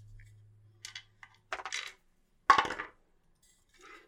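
Dice are picked up and rolled for an investigation check, rattling and clattering onto a hard surface in a few quick bursts, with a louder tumbling roll near the middle. The sounds are crisp, and no one speaks.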